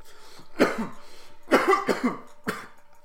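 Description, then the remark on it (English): Harsh, raspy coughing after a bong hit comes in three bursts, the middle one a double hack, loud with short gaps between, over a faint background hum. “I thought we were done coughing, but I guess we're not.”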